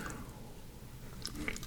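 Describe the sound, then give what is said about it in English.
A quiet sip of liquid with a soft wet slurp and a small swallow, a couple of faint mouth clicks near the end, no talking. “Oh, I'm gonna take a sip. I'm gonna take another one just for you.”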